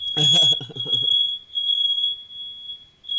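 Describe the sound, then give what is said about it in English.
A smoke alarm shrills with a steady, unbroken high-pitched tone throughout, while a man's voice talks loudly over it for the first second before the alarm continues alone. “Y'all know real shit happens, and we damn near just had a fire drill.”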